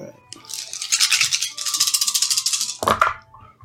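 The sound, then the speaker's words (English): Dice rattle steadily in a cup for about two seconds, a dense clicking shake, then spill with a sharp clatter and roll to a stop. They are rolled for attack hits and damage in a tabletop game. “God, these fucking dice suck.”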